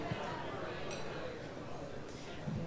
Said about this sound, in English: And there will be a little plate clinking and passing as we go, and that's okay. That's just part of, I think, being at a community feast.